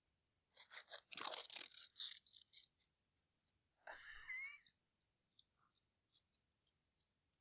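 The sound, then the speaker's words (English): A small piece of paper being torn off, a quick ripping burst followed by a longer tear, then scattered light crinkles and ticks trailing off, with no talking. “Sounds like a really small piece of paper.”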